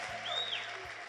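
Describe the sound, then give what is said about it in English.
An audience claps its hands together in praise of Jesus, many hands blending into a steady, dense wash of applause with no clear individual beats, a faint high tone drifting over it. “Let's give him a big hand clap and rejoice in the Lord.”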